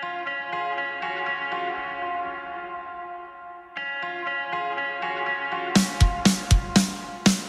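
A song opens with a sustained, reverb-soaked synth pad holding steady harmonic tones, then a brief dip before rhythmic, punchy beats with bright wash kick in near the end.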